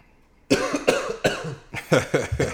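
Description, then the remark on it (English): A fit of harsh, sputtering coughs after a moment of quiet, about seven loud bursts in quick, uneven succession as a sip of IPA beer goes down the wrong pipe, with no talking. “Wrong pipe.”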